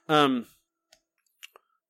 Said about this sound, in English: I'm just clicking and dragging.